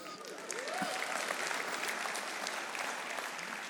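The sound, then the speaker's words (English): An audience claps steadily for several seconds, a dense, even patter of many hands with no voices rising above it. “That clap is for you.”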